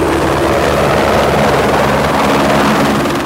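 A rescue helicopter at Sun Peaks Resort, returning from a search operation with a missing teen snowboarder, roars with a steady rotor thump and engine whine, filling the scene loudly and continuously for a few seconds, with no voices.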